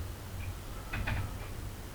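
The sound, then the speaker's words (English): A couple of soft, muffled knocks on a door land together mid-clip, with fainter taps around them, over a low steady hum. “Knocking is the door, the window's open, there's a slight draft.”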